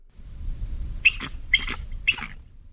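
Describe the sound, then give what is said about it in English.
A real bald eagle's cry: three thin, high-pitched chirping calls in quick succession, over a steady low rumble like wind. “Here, let's try an actual bald eagle cry.”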